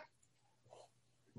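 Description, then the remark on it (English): A single sharp, loud sneeze bursts out at the very end, preceded by a soft sharp intake of breath after a moment of near silence. “So anyway, so we have this, I'm going to sneeze.”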